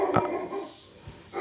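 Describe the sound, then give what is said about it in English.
A dog growls in short, rough bursts, one near the start and quieter ones toward the end, with no one talking. “What you got going on? You all right? Talking about dogs. You good? Yeah, he heard it.”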